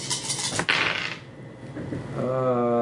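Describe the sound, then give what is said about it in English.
Dice rattle and clatter onto a hard surface during a dice game, a burst of sharp clicking hits that quickly settles, followed by a steady tonal sound toward the end. “Are you going to tell me after all those dice, nothing?”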